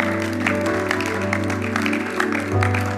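A crowd applauds and cheers steadily for five people who lifted their hands responding to Jesus, with dense, continuous clapping and shouts held over a sustained, low musical drone for the whole stretch.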